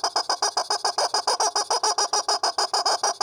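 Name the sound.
chicken clucking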